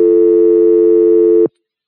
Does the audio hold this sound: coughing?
no